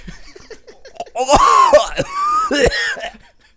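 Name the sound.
heavy coughing fit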